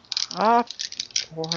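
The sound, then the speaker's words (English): Dice rattle in a cup or hand before a roll of eight dice in a game, a run of quick, bright clicking bursts, with two short voiced murmurs mixed in over the clatter. “But that's the amount of dice you can roll against me.”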